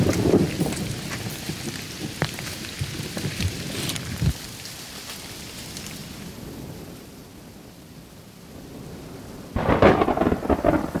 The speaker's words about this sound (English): That was the craziest bolt of lightning I've ever seen. That was like some power of God shit. Finally, the lightning strikes and thunderclaps feel like they're right on top of us.